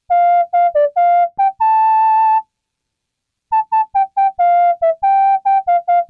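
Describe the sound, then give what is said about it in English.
A synthetic MIDI whistle tone plays a transcribed song melody: a short, bouncy run of clipped notes and one long held pitch, pausing for about a second before resuming with quick, evenly spaced notes. Clean and prominent, no voices. “Originally, these songs were in different keys, so I just transcribed them to be in the same place.”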